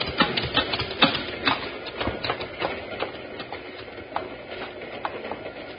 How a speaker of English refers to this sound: That's a cattle train, all right.